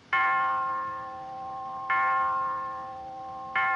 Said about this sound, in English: And as she says this, Harpo is playing with a clock, which rings.